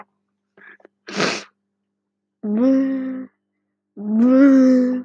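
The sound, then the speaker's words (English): A voice imitates the door of a train headed for Canterbury: a short breathy hiss, then two drawn-out hummed 'vroom' tones, each rising slightly in pitch, moderately loud with pauses between. “Sorry, I'm just making really weird noises, like the door's like vroom, vroom, vroom.”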